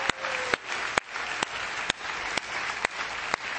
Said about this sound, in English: Praise the Lord, everybody. God is worthy of praise. Come on, clap those hands and give the Lord glory.